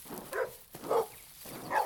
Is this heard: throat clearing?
no